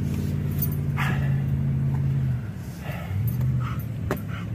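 A distressed dog whimpers and lets out a few short, sharp yelps over the steady low rumble of a car engine, as its owner evacuates by car from a fire in Chalet Village, filming on a phone.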